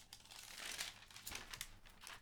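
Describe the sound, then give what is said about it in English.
Continuous crinkling of paper being handled, with irregular bursts of crisp, bright rustles and crackles over about two seconds, no voices. “My paper is just so loud.”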